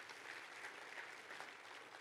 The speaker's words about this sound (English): I think you should give yourselves a hand clap for that.